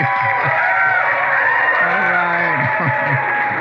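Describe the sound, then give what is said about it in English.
An audience applauds in a dense, steady roar of clapping that holds at full volume throughout, with scattered whoops and cheering voices rising through it. “I'm not going to say that first service applauded louder than that”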